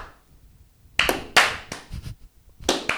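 A slow clap: a short run of hand claps starts after a second of quiet, roughly seven or eight sharp, crisp claps at an uneven, unhurried pace, with no voices.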